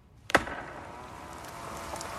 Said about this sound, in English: Also, when I was talking about Dorothy and Lindo walking through the woods in the rainbow, there's also wood chopping, and it is happening at the same rate as the tennis ball volleying.